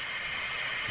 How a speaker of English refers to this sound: My hair's a mess, so I turn on my hair dryer.